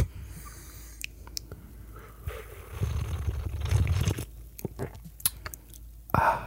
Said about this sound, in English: Let me do some ASMR with the espresso sipping. You ready? Okay. You have to like really pump the mic up on this one.